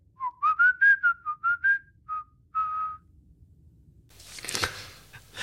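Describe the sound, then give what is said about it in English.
A bright whistled jaunty tune of short rising and bouncing notes for about three seconds, whistled to the DRD 1812 while working, then a brief noisy rustle or clatter. “He whistles to 1812 and they, as they're working.”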